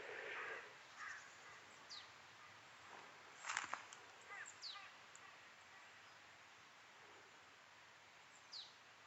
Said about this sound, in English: Now, here's an interesting bird. I'm not sure what that is. It feels like a marsh tit